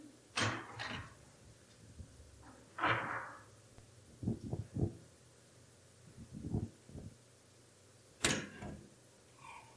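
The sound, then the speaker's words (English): A door is opened: a series of sharp clicks and thuds, a latch rattling and a couple of louder bangs spread over several seconds, with no one talking. “While you do that, I'm going to pop this door open over here because I'm sweating.”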